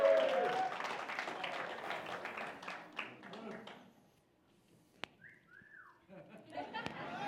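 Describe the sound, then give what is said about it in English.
A crowd claps for a man who has just been called up, in a dense, steady burst that fades out after a few seconds, followed by a couple of rising-and-falling whistles and a sharp tap amid scattered crowd noise. “Could we give him a round of applause?”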